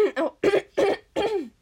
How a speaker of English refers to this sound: Just had a big old cough, that's the word.